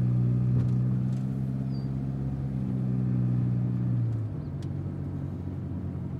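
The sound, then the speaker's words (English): A steady engine hum from inside a moving car; after about four seconds the drone drops lower and quieter as the car pulls to a stop and settles into an idle. “I'll take Hope once we stop. If it goes bad, get back in the car as quick as possible.”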